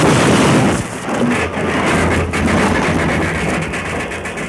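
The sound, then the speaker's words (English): A runaway train engine derails, roaring past in a loud, continuous wash of rumbling, clattering noise with a deep low drone, with no voices and no distinct single crash standing out. “That's what Deuce planned to have happen to the whole train. A derailment, an accident”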